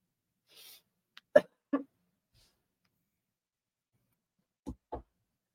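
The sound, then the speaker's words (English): Someone blows their nose in a few short, forceful bursts: a quick cluster of honking blasts, a pause, then two more snorts. No one speaks. “Sorry, guys. I'm blowing my nose.”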